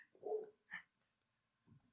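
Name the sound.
dogs barking next door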